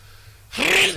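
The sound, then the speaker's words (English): After a brief quiet moment, a single loud sneeze bursts out as a sharp, breathy blast of noise, with no talking around it. “Hold on, I think I'm going to sneeze.”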